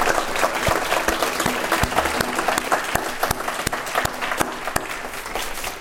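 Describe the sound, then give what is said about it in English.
A sustained round of audience applause at an evening event, thanking student and staff volunteers, many hands clapping densely and steadily at a fairly loud, even level for several seconds, with sharp individual claps standing out from the wash. “Please join me in thanking them all with a round of applause.”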